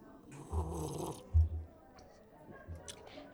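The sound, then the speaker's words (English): Wet slurping sips of a berry beer followed by gulps and soft swallowing, in two or three short bursts with brief quiet pauses between them. “Hang on one second. One more sip here.”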